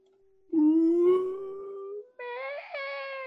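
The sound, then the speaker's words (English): Whale song: a long, drawn-out moaning call that slowly rises in pitch, then after a brief gap a second, higher wailing tone, fairly loud with nothing else around it. “Listen to these whale sounds.”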